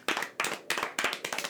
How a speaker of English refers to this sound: Uh-oh. Briscoe, they're clapping. Oh. Well, at least they like the dance.